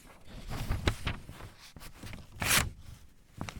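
Rustling and short rasping scrapes as a razor-sharp knife blade slices paper, building to one louder, longer ripping tear near the end, then a final brief scrape; no one speaks.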